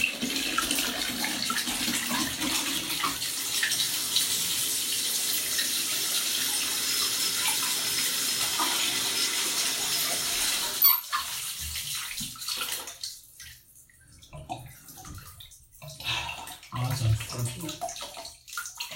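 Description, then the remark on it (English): Cold water gushes steadily from a tap into a bathtub for about eleven seconds, a dense hiss, then cuts off abruptly, leaving faint drips and trickles in near silence. “Shit, the water's cold.”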